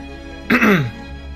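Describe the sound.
A single brief, voiced throat clearing, close to the microphone, like a deliberate "ahem" that drops in pitch, lasting under half a second over a faint steady background hum.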